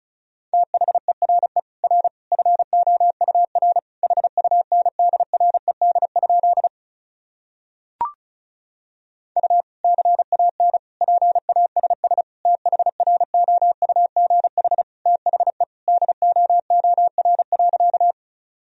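Rapid Morse code at about 35 words per minute, sending sentences made from the top 400 words and abbreviations: a single steady mid-pitched tone keyed into fast dots and dashes, running in two long bursts separated by a short pause and a faint click.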